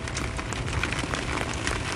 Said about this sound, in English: Isn't it crazy that I'm just sitting out here with rain pouring on me from the skies? Well, rain became a little bit faster.